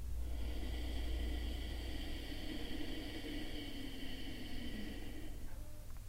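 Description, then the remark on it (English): A long, slow breath drawn in through the nose during a guided breathing exercise, a steady airy rush lasting several seconds at even volume, with a faint background hum and no talking. “Breathing in.”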